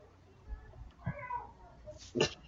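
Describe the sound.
A person imitates a cat with two drawn-out, whiny meow sounds, the second shorter and more strained, heard fairly quietly against a low background hum.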